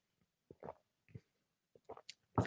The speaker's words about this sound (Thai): จิบน้ำแป๊บนึงฮะ